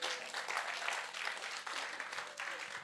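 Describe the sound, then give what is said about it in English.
A church audience applauds steadily, many hands clapping in a dense, continuous patter that holds at an even loudness for a few seconds without letting up. “Clap for the church.”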